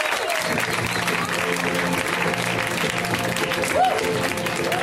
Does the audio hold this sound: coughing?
no